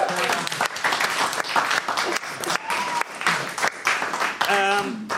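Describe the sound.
A room full of people claps steadily for several seconds, a dense burst of applause with a few voices calling out over it.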